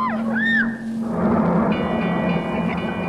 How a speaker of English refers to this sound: I don't know. Sounds like they reversed the engines.